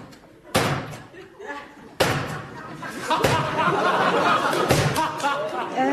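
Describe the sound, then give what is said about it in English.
A door is slammed hard four times in quick succession at uneven intervals, each bang loud, with indistinct voices murmuring between the slams. “Shut the door, if you would be so good.”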